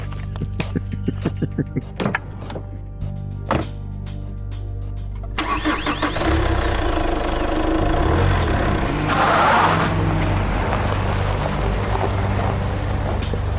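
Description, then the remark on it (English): A car engine cranks with a series of sharp clicks and a low idle, then roars to life loudly and revs hard as the car is whipped around and peels out onto the road, with a bright surge of noise midway. “All right, you whip the car around and you peel out and start heading off on the road as quick as you can.”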